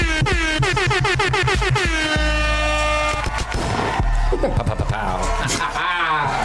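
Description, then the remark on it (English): Loud, rapid-fire air horn blasts stutter in a quick rhythm, then hold into a long sustained blare, followed by a dense, chaotic burst of horn-like noise. “I'm doing air horns”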